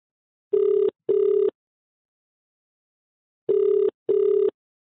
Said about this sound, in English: I pick up my phone and call